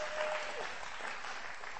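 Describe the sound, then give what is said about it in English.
An audience claps together, a dense, steady wash of many hands at moderate volume, with no talking over it. “Yeah, you can clap. Come on, let's clap from front to back, side to side.”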